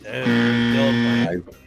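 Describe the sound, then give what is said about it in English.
A game show buzzer sounds once: a loud, harsh, low-pitched buzz held perfectly steady for about a second before cutting off abruptly, followed by a brief trace of faint noise. “I want the buzzer. That's what I want.”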